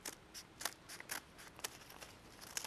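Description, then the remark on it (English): Scissors snipping steadily through a rectangle of paper folded flat for a magic trick, a series of crisp, crunchy cuts in an uneven rhythm, with no talking. “So imagine I take a rectangle of paper, and then I fold it flat and take my scissors, it's not strict origami here, and I make one complete straight cut.”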